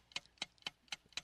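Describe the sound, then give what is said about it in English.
A game clock timer ticks steadily during a 30-second guessing round, five crisp, bright clicks in a quick, even rhythm about four per second, fairly quiet, with no voices. “All right, start the clock now.”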